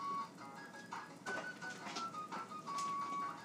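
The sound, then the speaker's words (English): A small Magic Bullet personal blender runs steadily for a few seconds, its motor giving a loud, whining hum with a faint shifting tone over churning, gritty noise as it blends a smoothie of ozonated water, banana and peanut butter. “This is the magic bullet with ozonated water, banana, and peanut butter.”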